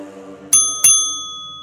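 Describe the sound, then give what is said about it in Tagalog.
A shop counter call bell in an antique shop is struck twice in quick succession, each bright metallic ding ringing out clear before slowly fading, with no voices. “Umalingaw-ngaw ang tunog ng call bell.”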